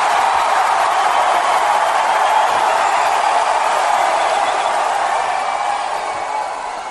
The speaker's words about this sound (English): I just heard the crowd, man. Ain't no way I can pass.